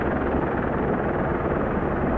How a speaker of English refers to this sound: Lastly, a helicopter hovering above.